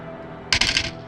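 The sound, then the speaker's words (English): A short burst of dice clattering and rattling across a hard table during a tabletop role-playing game, several quick bright clicks lasting under half a second against a quiet background. “I don't like how many dice he's rolling for some of these.”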